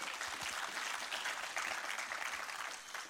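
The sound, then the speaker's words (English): A crowd applauds to the Lord after a prayer, many hands clapping at once in a dense, continuous wash of sound that holds its level for a few seconds, with no voices standing out. “Applaud to the Lord one more time”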